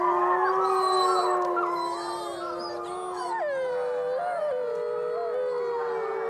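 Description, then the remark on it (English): A chorus of wolves howling together: several long, wavering, overlapping howls that rise and slide in pitch, sustained and fairly loud throughout, with no talking. “Well, I got like a wolves one.”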